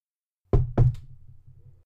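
Two firm knocks on a wooden office door in quick succession, clear, followed by a faint low hum that lingers briefly.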